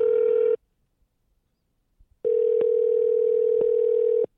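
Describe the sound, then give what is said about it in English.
A steady telephone dial tone hums briefly while a call is placed to a host's wife on the Eat Sleep Fantasy show, cuts out for a moment of near silence, then returns loud and continuous for about two seconds, with faint clicks from a handset. “Can I call your wife?”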